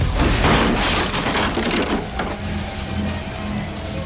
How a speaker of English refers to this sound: He was about to push through it when his door blew off its hinges.